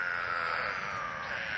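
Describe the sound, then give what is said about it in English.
Eastern spadefoot toads calling in a New England wetland, a steady chorus of nasal, bleating groans that blend into one loud, continuous drone with no pauses and no voices. “We leave you this week deep in a New England wetland. In the company of eastern spadefoot toads.”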